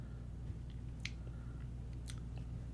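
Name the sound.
sipping a drink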